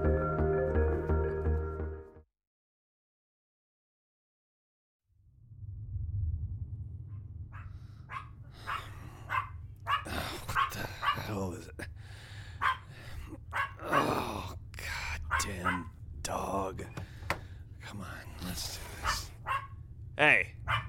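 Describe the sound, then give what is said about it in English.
A dog barks repeatedly and fairly loudly, in uneven bursts over a steady low hum, following a brief tonal sound and a few seconds of silence. “Quiet. Stop barking.”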